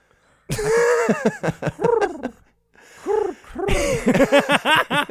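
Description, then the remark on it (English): A person imitates a pigeon's cooing with a string of throaty, warbling coos in two fairly loud bursts separated by a short pause. “You've painted a picture of a pigeon to me”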